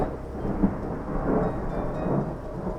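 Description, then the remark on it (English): A thunderstorm hanging over a mountain rumbles low and steady in the distance, with a soft wash of rain over it. The rolling sound swells gently now and then but stays subdued, with no voices. “A thunderstorm hung over one of the mountains in the distance and rumbled quietly.”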